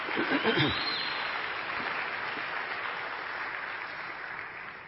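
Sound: audience hand clapping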